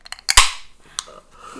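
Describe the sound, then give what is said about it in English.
A .357 revolver gunshot sound effect: a few quick mechanical clicks, then one loud, sharp blast that rings out and fades. A fainter crack follows about half a second later. No talking. “We're going to take it back to that 357 cool sound effect and start over.”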